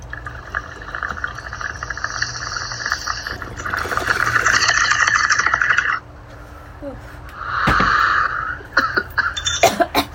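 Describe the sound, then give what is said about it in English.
Steady watery bubbling runs for several seconds as someone draws cannabis through a bong, then stops and gives way to a few harsh, loud coughs near the end. “Nice rip.”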